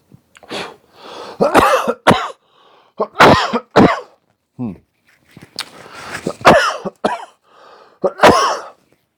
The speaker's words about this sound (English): But I do give a shit. I do give a shit that I just coughed in everybody's face. Yuck. Sorry.